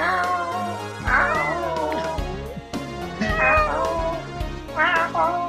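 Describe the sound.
A cat meows about three times, drawn-out rising and falling calls spaced a second or two apart, fairly loud over a steady humming, musical background.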